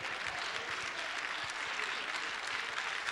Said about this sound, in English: Come on, give the King of Kings a big victory clap offering.